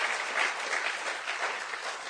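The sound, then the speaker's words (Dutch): A large audience claps steadily and continuously to give God a hand, a dense sustained wash of applause with no breaks, filling the whole moment without any speech. “Klop, geef God een applaus. Give God a hand.”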